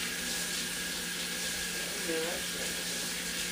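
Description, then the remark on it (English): A tap runs steadily into a sink with a constant hiss of water while dishes are being washed; a faint voice briefly comes through beneath the stream. “I'm sorry we had the water running the whole fucking time. We was washing dishes.”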